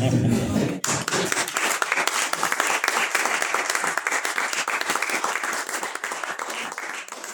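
An audience breaks into sustained applause, many hands clapping in a dense, steady patter that stays loud for several seconds, following a brief bit of low sound at the start.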